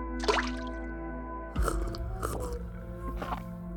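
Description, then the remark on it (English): A small wet plop as a cricket jumps into a cup of tea, with a soft drip before it and a few squishy sloshes after. No voices are heard. “He waited patiently, and when the handmaiden brought forth the tea, he jumped into the cup.”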